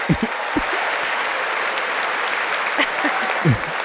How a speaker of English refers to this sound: Look at her. She clapped to make sure he heard all that.